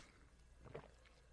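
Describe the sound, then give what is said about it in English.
A single quiet gulp of water being swallowed, brief, set against a low steady background hum with no talking. “I just drink some water.”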